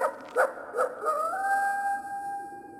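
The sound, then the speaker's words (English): A coyote gives two quick yips, then rises into a long, steady howl that holds its pitch for a couple of seconds, clear, with no other sounds around it. “Yeah, you find anything, I said, and he just threw his head back and howled.”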